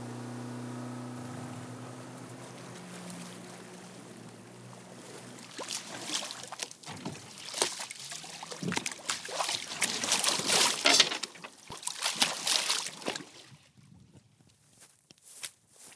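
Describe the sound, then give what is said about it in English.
A boat engine drones steadily at first, then water splashes and slaps loudly against the hull in irregular bursts as the boat heads down the York River from Gloucester Point to Goodwin Island through choppy water on a breezy, warm day, fading quieter near the end. “All right, we're heading out down the York River from Gloucester Point over to Goodwin Island to go check out some ghost forests on the island.”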